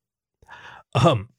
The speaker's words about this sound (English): Principal Trotter coughed, looking up at the pair.